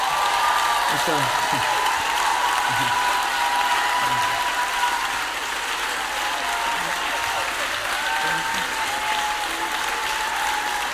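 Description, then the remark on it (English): An audience claps steadily for about eleven seconds to welcome a group of ex-drug addicts and former convicts onto the platform, a loud, dense, continuous patter of many hands that never breaks, with faint voices murmuring underneath. “By your nice little clap, maybe let me explain to you.”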